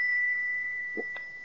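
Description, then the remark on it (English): A small bell, struck with a rose crystal pendant, sings a steady, high, pure tone that holds without fading, with a couple of soft brief knocks near the end. “You hold the bell, and I'll tap it with the pendant.”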